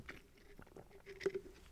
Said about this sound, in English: Okay, give me one second. I'm gonna take a sip of my coffee.